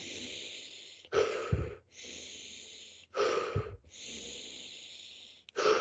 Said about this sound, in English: I mean, I'm really exaggerating the breathing so it comes across in the video. So I'm like trying to make a lot of noise when I do it.